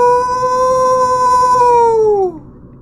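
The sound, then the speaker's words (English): A person imitates a wolf's howl with one long, steady, sustained tone that holds for about two seconds before sliding down and cutting off. It is loud, with no talking. “How would you rate my wolf howl?”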